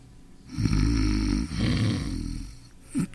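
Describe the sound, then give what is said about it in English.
A sleeping man snores loudly, two long rasping breaths in a row, followed by a short snort at the end, with no talking. “There must be something that'll put a stop to that hideous snoring.”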